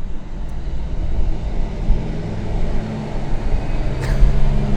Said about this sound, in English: As trucks go, that is a beast. Big truck. That's serious.